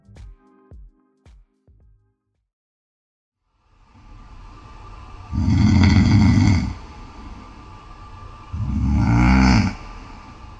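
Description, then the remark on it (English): A man snores: slow heavy breathing builds into two loud, rattling snores a few seconds apart, with a few short knocks at the very start and no talking. “He was once proud of the fact that he didn't snore, but now it's at the point where he's recording his snoring for strangers on a podcast.”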